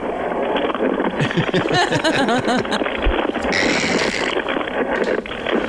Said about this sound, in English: That's people's paychecks getting crunched up.